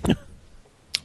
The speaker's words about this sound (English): Yeah, and excuse me, sorry, a bit of a cough.